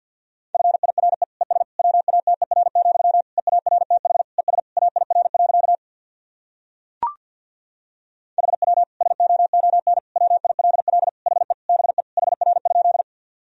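Very fast Morse code at 50 words per minute sending practice sentences built from the top 400 words and abbreviations: a single steady mid-pitched tone keyed in rapid dots and dashes, sent in two long runs separated by a pause and a brief click.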